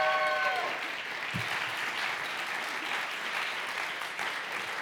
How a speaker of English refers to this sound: Would you give her a warm welcome? Give a round of applause.